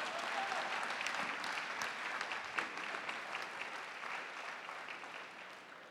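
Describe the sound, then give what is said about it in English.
A crowd applauds a pastor steadily for six seconds, a dense wash of many hands clapping at a fairly even, moderate loudness with no voices rising above it. “Clap for that pastor.”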